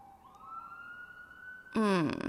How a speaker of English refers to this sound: Oh my god, these sirens. Can you guys hear that?